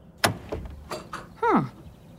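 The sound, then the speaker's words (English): An unlocked door is opened: a sharp latch click and a few softer knocks, then a short, falling hinge creak as it swings open. No one speaks. “Door's unlocked.”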